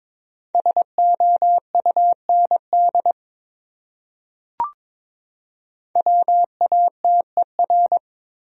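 Morse code tones at 22 words per minute spelling out one of the top 100 words: a steady mid-pitched beep keyed in quick short and long pulses, in two bursts separated by a pause and a brief click, with no talking.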